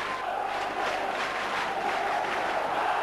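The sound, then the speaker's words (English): A large football crowd at a Carlisle United match roars and chants "United, United" continuously, a dense wall of massed voices with steady energy throughout. “The crowd were passionate, they were really getting behind them. United, United, you know, roaring on.”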